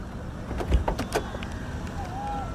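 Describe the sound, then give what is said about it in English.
A car's engine rumbles steadily while a few sharp mechanical clunks sound, like a gear being shifted, as a learner driver puts the car into reverse for the first time during a driving lesson, followed by a faint whine as the vehicle begins to move. “You put the car into reverse for the first time.”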